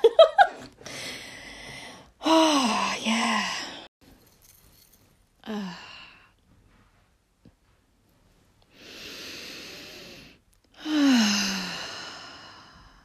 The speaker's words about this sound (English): Breathing, what a gift.